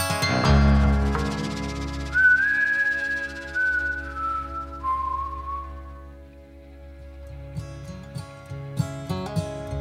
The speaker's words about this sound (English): And if you like a bit of whistling in your country, you've come to the right place.